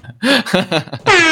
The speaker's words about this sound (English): Gotta hit the air horn for that.